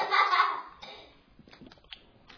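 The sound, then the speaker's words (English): Someone takes a drink of water: a brief breathy slurp, then several soft, irregular swallowing gulps and small mouth clicks, with no talking. “In fact, I need to take a drink right now.”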